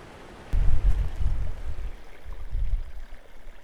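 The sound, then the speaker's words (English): Someone wading across a cold, flowing river, with heavy low sloshing and churning water surging after a brief quiet start, easing, then swelling again, over a steady rushing background. No one speaks. “Fully recovered now from the cold of that river crossing.”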